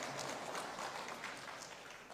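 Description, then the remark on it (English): An audience of about 50 grandparents gives a polite golf clap, a steady patter of many hands clapping at an even level for about two seconds, with no voices over it. “You know a grandparent is clapping when it's a golf clap.”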